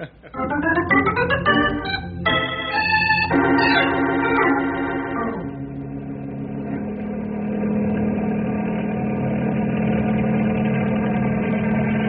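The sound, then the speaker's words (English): A helicopter engine spools up with a climbing, stepped whine over the first few seconds, then settles into a loud, steady droning hum with a low rhythmic throb; the helicopter flies back and forth at night to mix warm ground air with cold night air. “Using helicopter to mix warm ground air with cold night air, good idea.”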